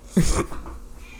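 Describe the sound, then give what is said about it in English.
A single short, sharp cat meow, lasting under half a second, then fades into faint background quiet. “Kitty.”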